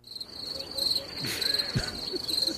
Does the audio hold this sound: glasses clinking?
no